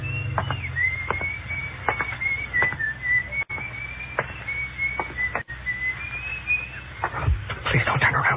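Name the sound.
man whistling a tune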